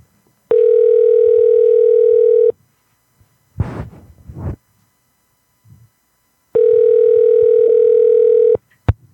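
A phone call ringing through the line without an answer: two long, steady electronic ring tones separated by a pause, with a brief muffled rustle in between.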